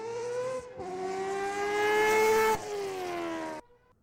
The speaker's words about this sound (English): So it is not out of a street legal car. I'll start with that. This is out of an endurance car. Oh, I don't know endurance. Made by Mazda. Oh, is it? I don't know. This is a 787B, a four-rotor rotary.